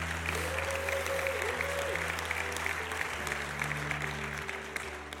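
An audience applauds steadily, a dense, even patter of many hands clapping for about five seconds without letting up, with low sustained keyboard tones humming underneath.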